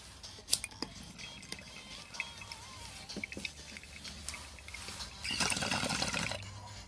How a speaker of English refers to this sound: But anyways, let's take this puff of Girl Scout cookies. Cheers, guys.